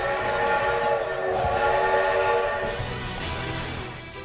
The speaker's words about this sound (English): At that moment, Johnson heard the imminent whistle from the train of destiny.